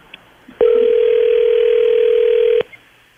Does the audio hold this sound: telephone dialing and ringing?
yes